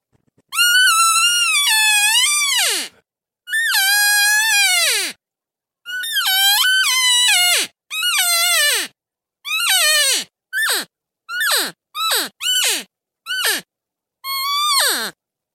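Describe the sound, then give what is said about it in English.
A hunter blows an elk call hard, used with a decoy, imitating a distressed elk to call in bulls and a cow: about a dozen loud, high, whining mews sliding downward in pitch, starting with long drawn-out cries and breaking into shorter, quicker bursts, with no talking. “I'm trying to sound like an elk that's in trouble.”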